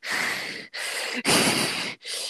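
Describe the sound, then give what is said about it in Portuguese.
A voice imitates a man breathing heavily into someone's ear, four loud, rasping breaths in quick succession, each separated by a brief pause, with no talking. “Ele ficava, tipo, ele me colocava pra sentar do lado dele, assim, aí ele ficava vendo as minhas artes, e aí ele ficava respirando na minha orelha, assim, ó.”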